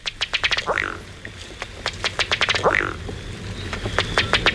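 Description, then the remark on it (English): A duck gives rapid, sputtering bursts of clicky calls, like a small outboard motor trying to start, broken by a couple of rising squawks, close and fairly loud against a quiet outdoor background. “a duck dude that sounds like an Evinrude is today's Talkin' Birds featured feathered friend, presented by Birdwatching Magazine.”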